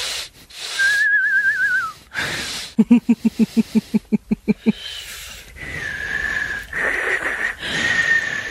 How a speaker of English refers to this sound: With these headsets that look like sportscasters. That's right. That highlight every breath you take and every whistle from the boogers in my nose.